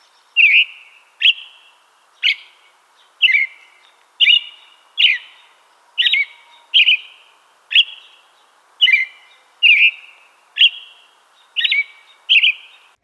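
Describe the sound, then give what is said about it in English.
An American robin sings a steady series of clear, rising-and-falling whistled phrases, about one per second, bright and loud over a quiet background with no talking. “It's often described as cheerily, cheery up, cheery up, cheerily, cheery up.”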